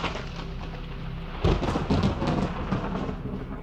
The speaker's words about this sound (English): Well, that evening, as young Mary Shelley looked out upon the lake, the mountains echoing with thunder and lightning, she had a vision.